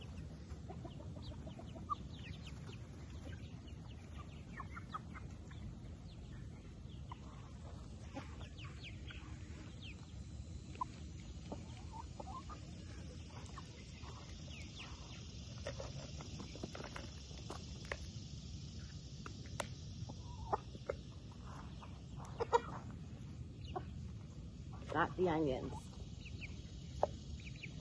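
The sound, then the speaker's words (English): A Silkie hen clucks softly and intermittently over a low outdoor rumble as she is called over to food, with scattered scuffs like footsteps and a muffled voice now and then, all fairly quiet. “Come on, little silky mama.”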